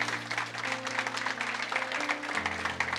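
A crowd applauds steadily, many hands clapping in a dense, continuous patter that lasts the whole stretch, with sustained low musical tones shifting underneath.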